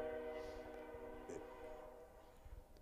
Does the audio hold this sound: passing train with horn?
yes